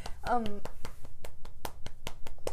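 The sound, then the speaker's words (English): Scattered hand clapping, a dozen or so sharp claps in an uneven rhythm over a few seconds, with a brief voice sounding near the start. “I, like, clap?”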